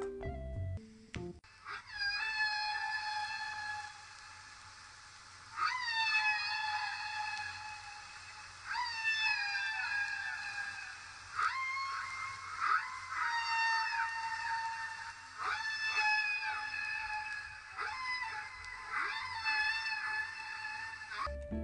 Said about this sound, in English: So, of course, I couldn't have a humpback whale episode without some wonderful whale song.